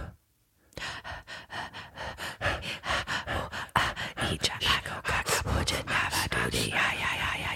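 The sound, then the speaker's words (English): Exaggerated heavy breathing, loud: a person puffs rapid, rhythmic in-and-out breaths with raspy panting gasps, starting after a brief silence and continuing steadily to the end. “They said no breathing.”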